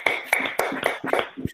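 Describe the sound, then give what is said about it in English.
Steady rhythmic clapping from a small audience applauding a reverend after her lesson, sharp hand claps landing roughly every quarter second at moderate volume, with no one talking over it. “Let's put our hands together and give Reverend Joan a round of applause”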